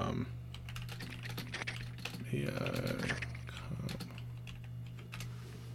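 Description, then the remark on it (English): Rapid, irregular keystrokes clatter on a computer keyboard, continuing throughout over a steady low hum, with a brief stretch of muffled voices partway through. “We're going to hear me typing away on my computer.”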